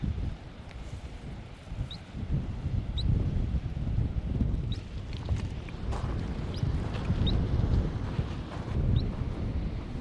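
Agitated banded dotterel calls, growing more annoyed as people approach: short, high, sharp peeps repeated at irregular intervals, faint beneath a steady, heavy rumble of wind buffeting the microphone.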